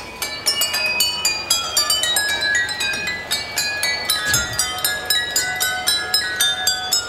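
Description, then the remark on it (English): A model train built by the Hamburg Museum of Miniatures passes along a track lined with thousands of water-filled glasses, striking them in quick succession. The bright, ringing glass tones form a tinkling medley of classical music hits at varied pitches over a soft mechanical rumble, with no talking. “The Hamburg Museum of Miniatures created a model train that chugs along a track lined with thousands of water-filled glasses. The train taps out a medley of classical music hits as it passes.”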